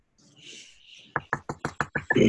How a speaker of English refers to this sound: Who's knocking on your door? Oh, it was me knocking my my fountain pen. I'm sorry, I didn't realize it was going to be that loud. It was super loud.